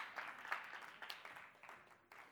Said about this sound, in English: Now you clap. And that's good. Clap.